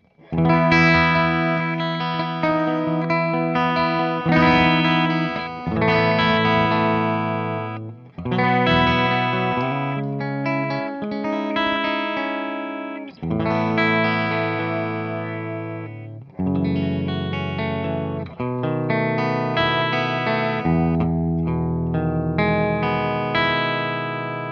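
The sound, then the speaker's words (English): An electric guitar with a clean tone plays sustained chords in steady phrases, fairly loud, with a few brief pauses between passages and no voices. “Okay, so normally, I would, like a good clean tone to me is probably something around this area. Actually, maybe a little brighter.”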